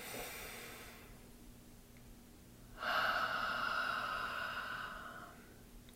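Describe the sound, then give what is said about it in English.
A slow, deep breath: a soft airy inhale drawn in through the nose, a short pause, then a longer, louder whooshing exhale out through the mouth, with no talking. “And let's just take a nice deep breath in through our nose and out through our mouths.”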